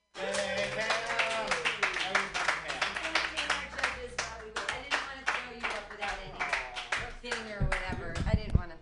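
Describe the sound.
An audience at a live comedy show claps steadily on request for several seconds, a dense patter of many hands, with voices calling out and cheering over the applause before it swells briefly at the end.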